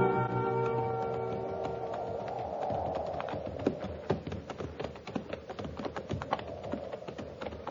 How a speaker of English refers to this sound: We'll keep the horses at walk just the same for a while.